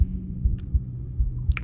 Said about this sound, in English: in thinking back 13 years ago now to that moment of listening to my heartbeat.